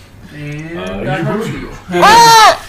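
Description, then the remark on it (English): A person does a goat impression: a wavering, nasal bleating voice, then one louder, strained bleat at the end. “And you can also sound like a goat.”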